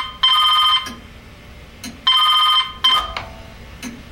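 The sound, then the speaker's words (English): A telephone rings twice, each ring a bright, buzzy electronic burst about half a second long with a pause between, followed by a click and a brief rustle as an answering machine picks up the line. “It was on Rocket's answering machine.”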